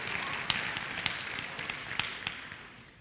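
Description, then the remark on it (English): An audience clapping: a soft, steady wash of applause with a few sharper individual claps standing out, gradually fading toward the end, with no voices over it. “Hey, they clapped in the first service too.”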